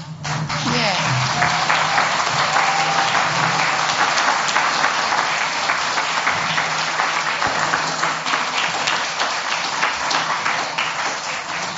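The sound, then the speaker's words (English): A standing audience applauds steadily for about ten seconds to celebrate and honor some people, a dense wash of many hands clapping at once, with a murmur of voices and a few cheers underneath. “So should we stand to celebrate and clap these guys?”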